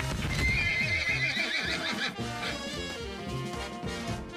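A horse lets out a loud, shrill whinny while hooves clip-clop in a steady rhythm, the neighing fading as the hoofbeats carry on.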